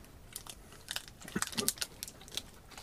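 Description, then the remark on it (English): Crunchy chewing, a run of irregular bites and crackly crunches that grow louder midway then taper off, fairly quiet overall with no talking. “As soon as I'm done chewing, we'll find out what the categories for the first round are.”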